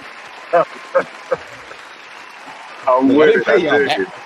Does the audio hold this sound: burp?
no